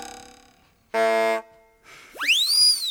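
A cartoon sound-effect sequence: a ringing ding that fades, a short buzzy boing, then a loud swooping whistle that slides up and back down. No voices.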